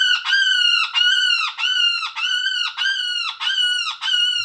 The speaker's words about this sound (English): Okay, so here's some different woodpecker sounds. This one's called Hairy Woodpecker.